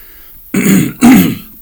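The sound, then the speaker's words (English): Two loud, phlegmy throat clearings in quick succession, each a rough, gravelly burst with a low growling rasp, the second slightly stronger, with no talking over them. “Excuse me. Jesus Christ. The Phlegmy episode.”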